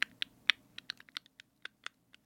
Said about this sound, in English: ASMR of typing keys